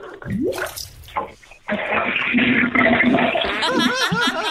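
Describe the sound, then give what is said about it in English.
A toilet is flushed as proof by someone who says they are sitting on it, with a loud, steady rush of water that swirls into gurgling toward the end, following a few seconds of brief laughter and voices. “Can we get a sympathy flush just as proof?”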